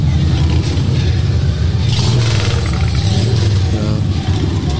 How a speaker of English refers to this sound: Now that we got the bikers going by.